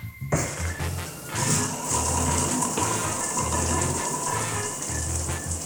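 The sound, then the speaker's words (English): A steady, hissing rush of water pours continuously from a shower running on a 3-minute daily water ration, with a low rumbling undertone that swells and dips; no one speaks. “Law, permission for shower access. Daily ration, please. Permission granted. Your 3-minute water ration begins now.”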